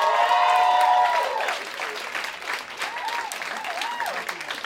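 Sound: audience applause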